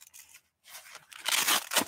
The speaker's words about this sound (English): And so in here, I've got a Gen 7 Cat tourniquet and the pocket. I pull the pocket out.